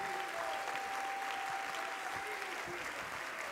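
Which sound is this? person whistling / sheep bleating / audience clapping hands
audience clapping hands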